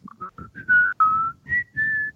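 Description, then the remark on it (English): A person whistles a short, recognizable movie theme melody, with quick separate notes followed by longer held tones rising and falling. No talking. “I was just randomly whistling it, and I didn't notice I was whistling it.”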